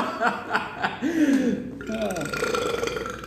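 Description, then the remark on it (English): A loud, drawn-out burp rumbles, its pitch wavering for a couple of seconds, followed by a second rougher belch with some breathy voice sounds around it. “It's a hot burp.”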